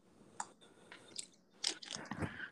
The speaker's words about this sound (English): Yes, I need to drink my water real quick. Hold on.